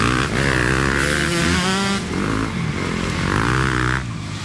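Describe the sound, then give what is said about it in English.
Dirt bike engines rev hard and loud as Meek Mill and friends ride through the lamp-lit streets of Manhattan, weaving between city traffic; pitch climbs and drops in repeated surges over a constant, rough motor drone with no one talking. “A video had emerged of Meek Mill and friends riding dirt bikes through the lamp-lit streets of Manhattan, weaving between the city traffic.”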